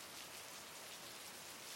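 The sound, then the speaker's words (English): Steady rain falls at dawn in Askew in a continuous, even hiss with soft patters of drops, moderately loud and unchanging throughout, with no voices or other sounds. “It is dawn in Askew, and it's still raining, and we are lost.”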